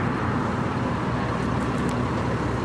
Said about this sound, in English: The bus moved away.